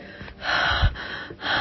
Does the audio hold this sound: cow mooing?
no